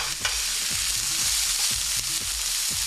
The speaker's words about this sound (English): And I'm going to saute my vegetables first. Cover the frying pan with the oil. Add the vegetables. them saute for several minutes so that they'll all blend in the flavors.